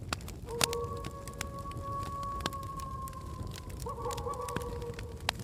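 An owl calls with a long, steady, wavering tone that holds for several seconds and briefly shifts near the end, over a constant patter of rain and scattered drips.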